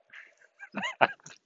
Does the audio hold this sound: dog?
yes